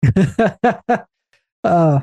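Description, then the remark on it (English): A voice mimics snoring: five quick, rhythmic grunting breaths, a brief pause, then one longer, drawn-out rasping snore. “He snores.”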